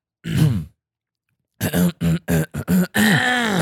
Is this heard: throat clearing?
yes